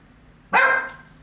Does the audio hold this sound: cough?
no